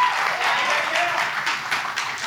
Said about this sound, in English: I love that energy. I love that you're so excited. And thank you for clapping again. We appreciate you.